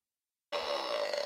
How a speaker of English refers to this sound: It's just a fart sound. Like, it should be like Whoopi Goldberg saying something.